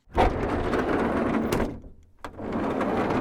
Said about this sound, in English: There you go. That was the sliding door on the back of a Renault, apparently. There was a sliding door. I would have said that it sounded more like a Sprinter, but okay.